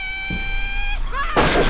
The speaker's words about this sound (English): So I'm going to go ahead and plug everything into the movie machine here, which sounds like a six shooter and somebody shouting.